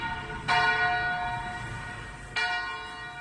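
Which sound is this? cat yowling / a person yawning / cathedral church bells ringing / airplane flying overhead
cathedral church bells ringing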